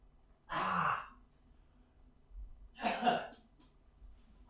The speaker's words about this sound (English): Alright, cool. I coughed it back up.